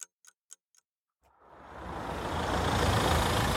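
Four quick, evenly spaced clicks give way to a car engine rumbling up and swelling into a loud, steady roar as a car reverses out of its parking spot, with no voices.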